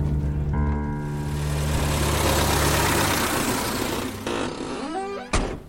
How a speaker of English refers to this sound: London, May 1938. The Cornish Riviera Express leaves Paddington Station for Penzance. Final stop, Penzance.